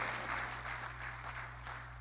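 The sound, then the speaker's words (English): A short, sparse smattering of hand claps from an audience during a sermon, a thin patter of claps over a steady low hum, lasting about two seconds with no voices. “That, I gotta quit, but that deserves more than that little cheap hand clap, because some of y'all in here know that you would be dead if it wasn't for the people that were praying for you.”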